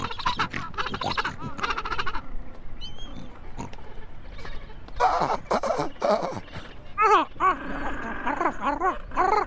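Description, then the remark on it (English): Penguin calls in a rough, honking series, mixing harsh snorting bursts with brief higher braying cries, loud and repeated throughout with short gaps between them. “I don't like the penguin sound effect.”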